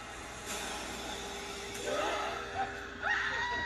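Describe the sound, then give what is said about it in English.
Muffled voices yell and shriek in short bursts over a steady background hum, with louder cries rising near the end. “They're just yelling. They're just screaming.”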